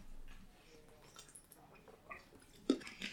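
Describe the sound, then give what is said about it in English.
Quiet mouth sounds of someone sipping and swallowing water: soft wet clicks and gulps, with a slightly louder swallow near the end and no talking. “Everyone, take a sip of water. You get 5 seconds.”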